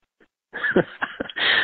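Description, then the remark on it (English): A dog barks in a short, agitated flurry of three or four rough, overlapping yaps that trail into a sustained, strained bark at the end, with no one talking. “I think my dog is a... Hey, chill out.”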